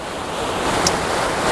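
A rushing waterfall in Scotland roars steadily, a dense continuous wash of falling water that never lets up, with no voices.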